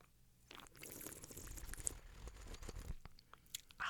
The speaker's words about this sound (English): And we're making that horrible noise because we're pulling all of that wine all the way across your tongue into the back of your mouth. And you'll get a sense of the complexity of the wine, the finish of the wine, the acid level.